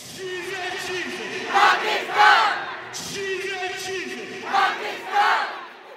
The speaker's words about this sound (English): The energy was frantic and hostile. People shook their fists at the Indians across from them. Allah! Allah! Allah! The crowd was intense, shouting things like Allah is great and long live Pakistan.